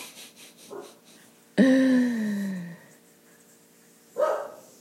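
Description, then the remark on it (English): A neighbor's dog, before 7 a.m., lets out a loud, drawn-out bark that slides downward in pitch, then after a pause gives one shorter, sharper bark. No one speaks. “I'm hoping they get a handle of their dog.”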